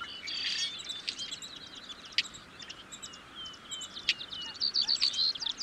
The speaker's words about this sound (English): Blackbirds in general make so many different sounds. It can be hard to keep them all straight. Most of these high-pitched sounds we're hearing are either from red-winged or yellow-headed blackbirds.